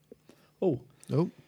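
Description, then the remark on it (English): Two short, throaty coughs from a person with a lingering tickly cough, about half a second apart, each a sudden rough burst with nothing else around them apart from a faint low hum. “Excuse me. Bit of a cough.”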